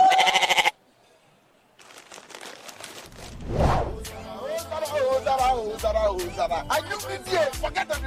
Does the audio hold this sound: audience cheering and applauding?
no